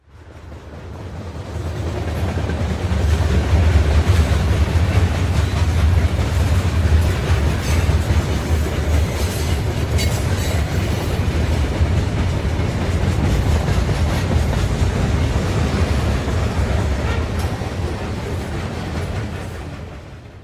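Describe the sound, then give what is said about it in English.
A train rattles steadily along the tracks, loud, with a deep rumble and a dense clatter of wheels that fades in and out over about twenty seconds, no voices; an MTA train heading from Connecticut to New York City. “Yes, and the train is clunky.”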